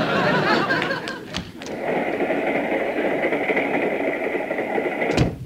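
A passenger train bound for Los Angeles rolling along the rails: a steady, dense rumble with a sustained metallic whine, a few clacks early on, and a sharp knock just before it stops.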